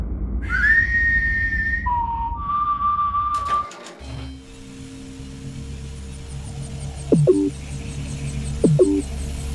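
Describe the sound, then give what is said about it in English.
Whistling: a long high note dropping to a lower held tone, then after a brief clatter, two short rising whistle chirps over a steady low rumble, with no one talking. “What are you doing? What, whistle it off, whistle it off.”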